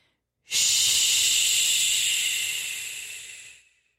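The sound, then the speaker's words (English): A voice makes one long, steady "shh" hiss lasting about three seconds, bright and breathy, starting abruptly and tapering off gradually at the end. No other talking is heard. “He went, shh.”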